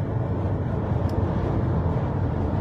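A small flat-nose dump truck, not a big rig, drones steadily from inside the cab while being driven, a loud, continuous low engine rumble with road noise and no pauses or speech.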